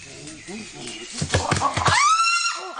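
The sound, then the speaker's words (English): A wild chimpanzee's pant-hoot: breathy, rhythmic pants speed up into a few sharp, loud pulses, then climax in a long, rising, high-pitched hooting scream. “The panting, hooting call of a wild chimpanzee, quickly followed by a short burst of tree root drumming.”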